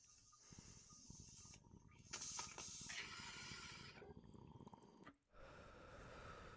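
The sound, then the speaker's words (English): A long hissing inhale through a dab rig, airy and steady with a gurgling, bubbly undertone. It breaks off briefly near the end, then starts again. “Do you want to take a rip?”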